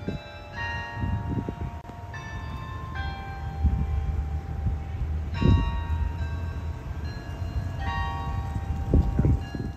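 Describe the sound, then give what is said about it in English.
Noon bells on the Marshall University campus chime a slow Christmas carol melody in December, each ringing note lingering into the next, over a steady low outdoor rumble; no one speaks. “We're in December now, and I think it was the noon bells started chiming. And they were playing Christmas carols with the bells on campus.”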